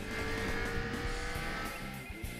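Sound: car accelerating hard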